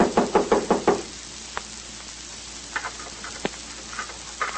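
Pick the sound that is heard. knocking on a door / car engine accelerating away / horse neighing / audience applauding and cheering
knocking on a door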